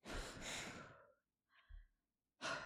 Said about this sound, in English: Hold them to your mouth and breathe on them. Do I need any intention or anything? No, nothing. I'm just breathing on the cards.